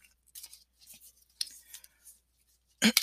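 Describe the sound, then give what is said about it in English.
Cards from the relationship deck by Abraham Hicks are being shuffled, with soft papery sliding and riffling in short intermittent bursts, ending in a louder, sharper riffle. No one speaks. “So let me just go ahead and start shuffling that and see what pops out.”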